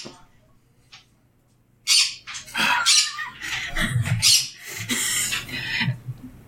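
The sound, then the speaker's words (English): A pet bird squawks and chirps loudly in harsh, bursting calls for several seconds after a quiet start. The cries are piercing, with a faint low hum underneath and no talking. “She's squawking because you left the room.”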